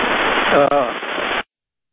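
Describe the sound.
Harsh, steady static from interference on a caller's bad phone connection hisses loudly, with a garbled voice faintly breaking through, then cuts off abruptly after about a second and a half as the call is cut, leaving silence.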